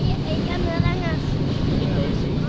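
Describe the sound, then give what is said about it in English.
A whale-watching boat's engine rumbles low and steady on the Caribbean Sea off the Dominican Republic, a constant drone filling the background while indistinct voices of some 50 visitors murmur faintly as they search for humpback whales. “Some 50 visitors from around the world lean over the rail of the whale-watching boat Porto Mia.”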